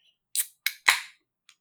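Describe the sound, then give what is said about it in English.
A can of 8.5% West Coast style beer cracks open: a couple of sharp metallic clicks followed by a louder snap with a brief fizzing hiss, then a faint tick. No one speaks. “It was a gentle crack.”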